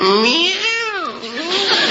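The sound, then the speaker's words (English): A cat meows in one long, fairly loud cry whose pitch rises, dips and climbs again over about two seconds, with no talking alongside it. “That's a good boy, Prince. Nice little cat.”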